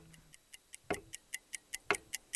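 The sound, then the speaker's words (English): A cuckoo clock ticks steadily, a quick, even run of light clicks with a heavier, fuller knock about once a second. No voices are heard. “They've been making clocks in the Black Forest since the late 17th century, but they hadn't included an automaton cuckoo bird in their products.”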